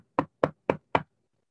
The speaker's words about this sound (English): I heard that knock before. That's the Reaper right there, boy.